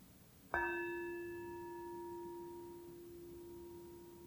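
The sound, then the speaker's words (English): A single bell is struck once, then its clear, pure tone rings out and slowly fades over several seconds, with no voices. “Going even deeper and deeper into the stillness as you listen to the bell, the echo of it.”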